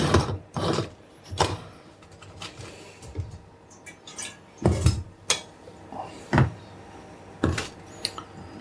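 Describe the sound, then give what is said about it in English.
Metal parts of a stovetop coffee pot being screwed together, heard as a series of sharp, irregular clicks and gritty scrapes with short pauses between them and no talking. “And then screw the top on.”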